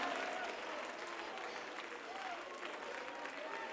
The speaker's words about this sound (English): Hand clapping. Foot stomping. Aisle running. Church of the living God.